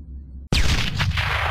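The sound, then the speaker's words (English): A low hum cuts out, then a sudden loud explosion bursts in, followed by a roaring, rumbling blast that keeps going with crackling, hissy debris. No one speaks. “Kaboom! Did you feel that cosmic explosion?”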